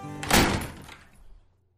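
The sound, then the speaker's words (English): A door swings shut as someone walks out, with a single solid thump and a brief rattle, the sound fading away over about a second before silence. No one speaks. “And the young Alabaster walked out the door.”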